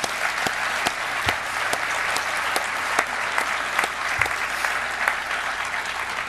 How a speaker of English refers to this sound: And I just want to say thank you from the bottom of my heart for everything you've done for me, and you deserve a round of applause for sure.